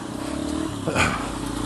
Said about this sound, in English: So watch out, you're straight across it, watch out for the traffic coming in there.